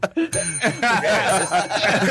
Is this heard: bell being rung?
yes